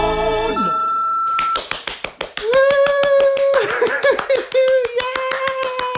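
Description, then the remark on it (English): A single person gives a solo round of applause on their own to start a show, clapping in a quick, steady rhythm, a couple of dozen sharp claps in a row, while a sustained tonal hum carries on underneath. “There's something quite sad about a solo clap, isn't there?”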